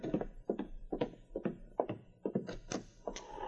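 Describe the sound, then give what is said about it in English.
A steady series of hollow wooden knocks on a cabin door, about a dozen dull thuds in quick, slightly uneven rhythm, fairly loud with no voices. “He had just finished when there came a knock at the door.”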